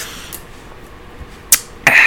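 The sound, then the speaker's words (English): A voice imitates the flush of an airplane vacuum toilet: a short breathy puff, then a loud, sustained rushing whoosh with a hissing, whistling edge that cuts off abruptly at the end. “So I push the little thingy down and all of a sudden you hear the and it's gone.”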